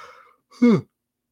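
A single short, stifled, involuntary yawn: a brief voiced groan that slides downward in pitch and cuts off quickly, preceded by a faint breathy exhale, with no talking.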